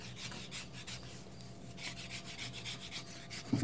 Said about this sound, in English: Is the bark. I have to sahwat. Sahwatch. I'm scraping the skin off, mm-hmm. the bark off, I mean. Sahwam is what I'm doing.